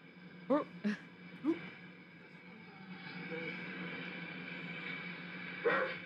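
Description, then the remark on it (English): A girl's voice imitates a dog, giving four short, harsh barks spaced irregularly, three close together early and one more near the end, over a steady low hum of background noise. “She's barking as a dog in this one.”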